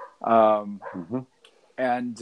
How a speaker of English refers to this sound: Oh, there's that dog. God bless him.